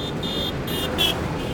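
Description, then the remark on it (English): A huge SUV's engine rumbles steadily on a city street as it cuts in front of a cyclist, a low continuous drone with a faint high whine on top, no voices. “As I cut across to Brunswick Street, an aggressive man in a huge SUV cuts in front of another cyclist”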